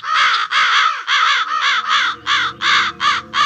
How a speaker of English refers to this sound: Oh, no. Listen to them crows out there. They always mean bad luck.